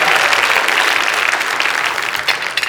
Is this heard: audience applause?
yes